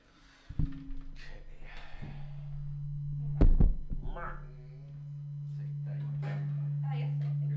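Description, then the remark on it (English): A steady low electrical hum from an overly hot microphone drones beneath faint, muffled voices, swelling louder toward the end, with a few heavy thumps and knocks like the microphone being handled. “Hum. No, Hum, you're bad.”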